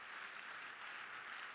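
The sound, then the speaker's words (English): A church audience claps their hands in a dense, steady burst of applause that fills the whole moment, many hands at once with no distinct beats, even in loudness. “Clap your hands one more time if you're thankful for God's mercy.”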